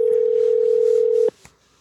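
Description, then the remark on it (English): A steady electronic ringing tone from a phone line as someone calls a friend holds evenly for just over a second, then cuts off abruptly with a faint click, leaving near silence. No one speaks. “Answer the phone.”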